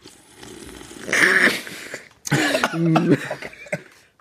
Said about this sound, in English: That coughing mess next to me